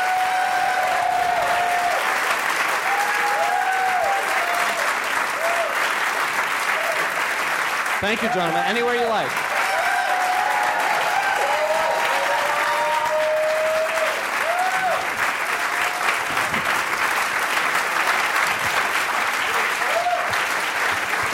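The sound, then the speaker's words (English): Sustained, loud applause from an audience welcoming the guests Steve Levitan, Phil Rosenthal and Norman Lear fills the whole clip as a dense, steady wash of clapping, with a few brief spoken words and voices heard over it. “Please give an enormous round of applause to all of our guests, Steve Levitan, Phil Rosenthal, and Norman Lear.”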